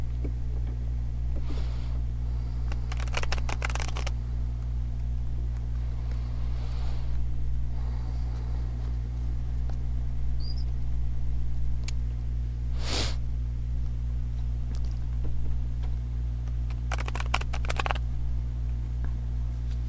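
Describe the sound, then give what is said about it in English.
A deck of tarot cards is shuffled in a few short, crisp riffling bursts spaced well apart, over a steady low electrical hum with no talking. “I gotta say, as I was shuffling, I saw the Beyond Illusion card, which I think is the, gosh, I gotta look it up.”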